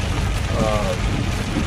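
nature, rain

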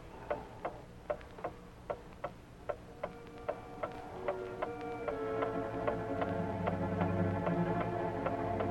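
household object, clock ticking

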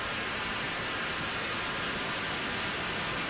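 sound effect, TV static white noise

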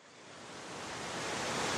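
nature, rushing waterfall

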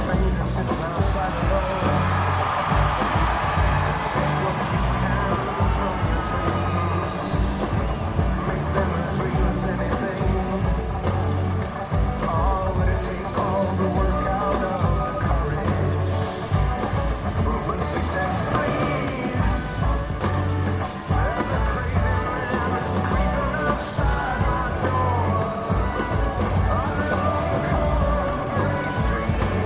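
crowd, concert crowd cheering

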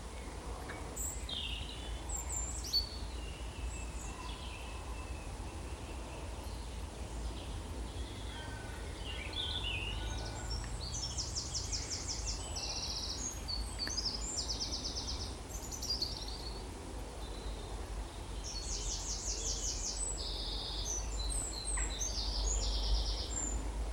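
bird, wren singing

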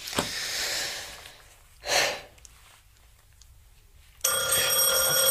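household object, doorbell ringing

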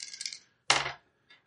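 household object, dice rolling

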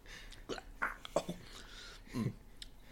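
food or drink, sipping liquor

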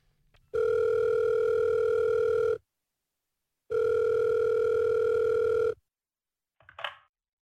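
signal or alarm, telephone call ringing through

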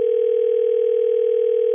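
signal or alarm, telephone dialing and ringing

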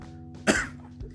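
human body sound, coughing

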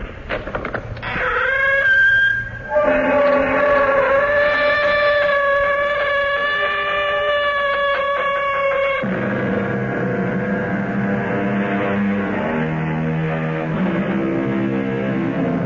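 sound effect, squeaking door opening

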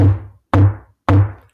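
impact, knock on a door

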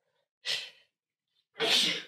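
human body sound, sneeze

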